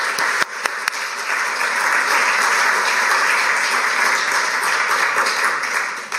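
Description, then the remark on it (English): A crowd applauds steadily at the Athenaeum, a dense wash of many hands clapping at once, sustained and fairly loud for several seconds with a few sharper individual claps near the start. “So a round of applause for all of them.”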